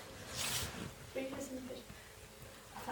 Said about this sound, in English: It was the sound of me getting a glass of water. I mustn't ever do it again.